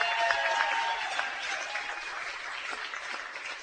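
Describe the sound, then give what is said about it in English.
A crowd applauds steadily, a dense wash of clapping with some cheering mixed in, holding at an even loudness for several seconds and easing slightly toward the end. “And let's give a cheer for Jess for thinking of all these things.”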